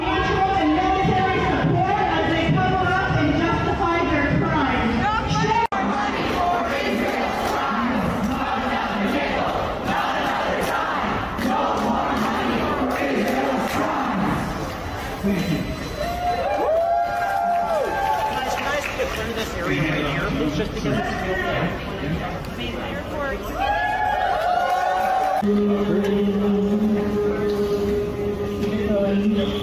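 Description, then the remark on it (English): A loud crowd of Palestinian activists occupying and blocking Union Station in downtown Toronto, chanting and shouting without pause, many voices overlapping in rhythmic bursts of yelled slogans, with a steady tone emerging beneath the noise toward the end. “And Palestinian activists took over the place. They blocked the place.”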